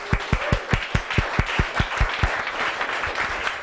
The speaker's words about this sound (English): The guys behind the bar have done a great job. Thank you, guys. Round of applause for the guys.